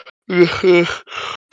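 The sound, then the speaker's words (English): A tired person yawns past their bedtime during a long livestream, a drawn-out yawn in a few breathy, voiced pushes, rising and falling with a groaning tone, then trailing off into a soft exhale. “Gotta yawn. It's past my bedtime.”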